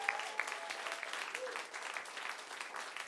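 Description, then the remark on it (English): A crowd applauds the 2018 Emerging Voices writers steadily, dense overlapping hand claps forming a sustained wash of noise, with a few brief whoops or cheers rising above it. “Let's hear it for the 2018 Emerging Voices.”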